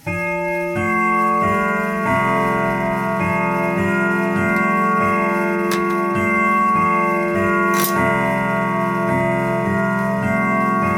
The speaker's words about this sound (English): The grandfather clock in the corner rings out a chime, informing the listener that the hour was 10. 10 o'clock! Exclaims the baker.